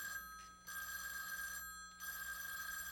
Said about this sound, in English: Thus it was that later that same day, a menacing phone call came to the famed old Harmony Ranch.